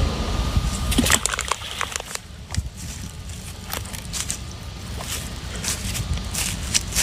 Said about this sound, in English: This is what happens when you throw a rock into the water in East Palestine, Ohio.